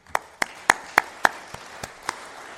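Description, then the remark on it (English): Applause in a steady rhythm: about eight sharp, distinct hand claps that peak in the middle and then grow softer, with no talking. A church audience is applauding itself. “And I think you should give yourselves a round of applause for that.”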